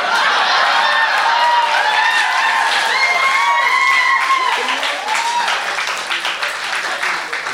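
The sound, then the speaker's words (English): A crowd of more than 80 people in the Beaver Dome applauds loudly and continuously, dense clapping mixed with rising whoops and cheers, easing off slightly toward the end. “She came so hard that the entire rest of the 80 plus people in that Beaver Dome stopped and applauded.”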